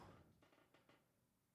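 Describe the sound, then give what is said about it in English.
Three faint, quick computer clicks as someone searches on Google, irregularly spaced, over a quiet background hum, with no talking. “I'm Googling okay, it right cool. now. You hear me yeah, clicking.”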